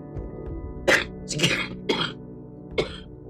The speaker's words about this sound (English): Sorry about that. I've had this cough for like 3 weeks now, and it's just a sinus infection that is stuck in, stuck and it won't come out.